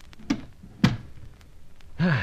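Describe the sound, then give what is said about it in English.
A door is pushed shut with two dull, solid thunks, the second heavier, followed by a quiet pause before a voice starts speaking. “Then inside, smartly. Si. And shut the door.”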